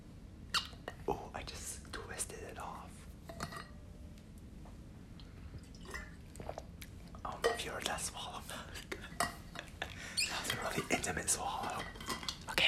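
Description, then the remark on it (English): Quiet sips of water followed by gulping swallows, with soft wet mouth clicks and faint breathy whispering in a hushed setting. “And then here's me drinking water.”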